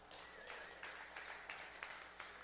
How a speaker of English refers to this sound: Thank you, Ann. Everybody clap for Ann.